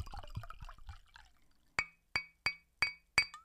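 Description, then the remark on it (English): A drink is poured briefly, then glasses clink together five times in a quick, uneven rhythm, each tap bright and ringing, with no voices. “Got to go ahead and pour it up, man.”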